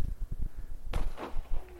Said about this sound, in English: Yes! Looks nicer in the fog somehow. It does. That was genuinely quite magical. And the thing is, no one that's in town can see them. No. The fireworks. This is for us, isn't it? This is for us. Private little display.